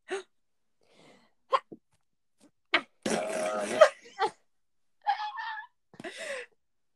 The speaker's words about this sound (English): Oh, I'm gonna sneeze.